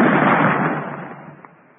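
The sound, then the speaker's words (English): A single cannon shot, fired after its fuse is lit: a loud, broad booming blast that rolls out and gradually fades over about two seconds, with no voices present. “And you ain't going to fire that cannon no more.”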